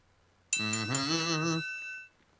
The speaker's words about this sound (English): And the bell has rung, and it's time for us to bid you adieu.